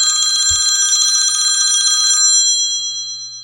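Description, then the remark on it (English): A telephone's bright metallic bell rings loudly in a kitchen before breakfast, in one continuous trill for about two seconds, then its tone lingers and fades out. There is a soft thump near the start and no voices. “After the twins were all settled, Penelope wandered into the kitchen and nearly jumped out of her skin when the phone rang.”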